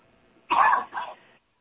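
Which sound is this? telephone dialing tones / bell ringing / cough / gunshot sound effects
cough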